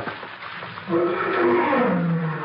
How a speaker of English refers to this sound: What was that? Big cat out there somewhere.